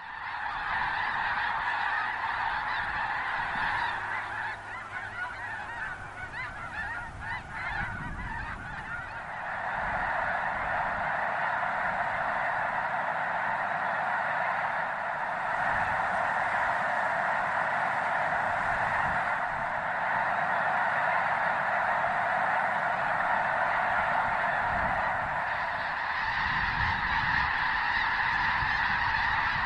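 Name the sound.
migrating geese honking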